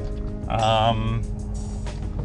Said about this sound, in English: I did some research on my car. I'm not a car guy, and it sounds like the front left brake pad has been worn down, and it's the kind of the raw metal plate hitting the brake, which is making that grinding sound.